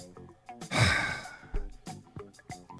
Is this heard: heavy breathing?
yes